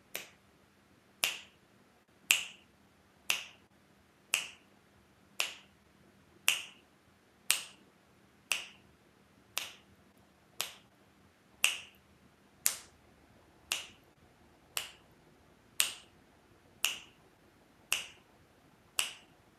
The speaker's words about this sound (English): I'll just click so that you can keep the beat, the voice of the divine.